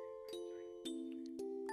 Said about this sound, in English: And I don't know, I always had this feeling that this song's about this infant kind of, because it starts off with those infant chimes, right?